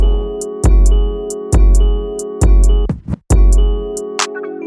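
A music track with a steady beat of booming bass kicks and crisp hi-hat ticks over sustained warm chords, briefly dropping out into a swooshing break before the groove returns; no singing.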